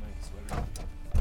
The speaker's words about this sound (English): Oh, someone's knocking at the van door.